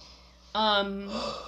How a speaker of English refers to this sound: No, yawning is great.